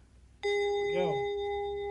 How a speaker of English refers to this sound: Don't forget to turn the page every time you hear the chime.